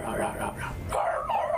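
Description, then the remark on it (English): A dog next to the speaker whimpers, a short run of high, wavering whines that rise and fall over a second or two, fairly clear against a faint background. “But there's a dog next to me right now and he's not barking.”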